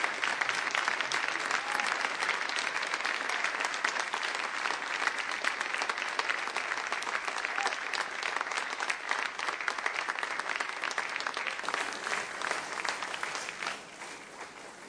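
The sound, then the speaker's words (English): Sustained applause from a church service audience after a worship song by a singer and the youth praise team, a dense, steady wash of clapping that holds for most of the fifteen seconds before thinning slightly at the very end. No one speaks over it. “Thank you, …, and let's hear it again for … and our youth praise team.”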